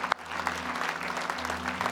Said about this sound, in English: Come on, you're clapping like the 8 o'clock service. It's the 9:30 service.